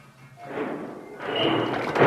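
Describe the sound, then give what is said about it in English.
Plumbing in an old house thumps and rumbles after the water is turned on, in two rough, noisy surges, the second louder and harsher than the first, with a sharp knock at the very end and no voices. “So the plumbing's not perfect.”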